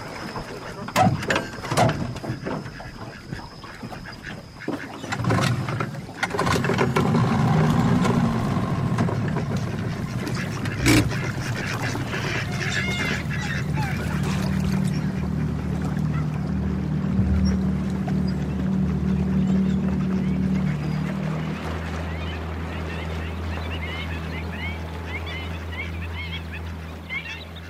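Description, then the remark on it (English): A boat glides steadily along a waterway with a low, continuous drone, while waterfowl honk, cry and sing intermittently; a few clatters and bumps come early on. “The boat glides along the waterway.”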